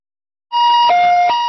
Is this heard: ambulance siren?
yes